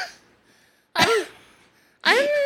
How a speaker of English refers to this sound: It's not as bad because like your previous coughs were like, oh my God. Big ones. These are literally just the fucking toddler.